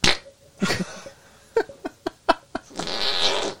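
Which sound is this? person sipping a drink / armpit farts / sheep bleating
armpit farts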